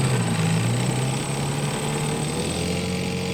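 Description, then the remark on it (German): A motorboat engine roars at full throttle as the boat speeds away, a loud, steady droning hum with a broad rushing hiss over it, holding constant throughout with no voices. “Mit Vollgas rauschte Demetrios mit ihm und den anderen Asiaten nach Dikdis Fahrtwerk hinüber.”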